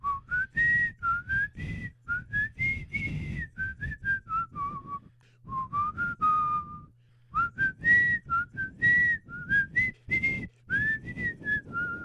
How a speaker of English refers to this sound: Let's see if I can do this. I got to whistle it. You ready?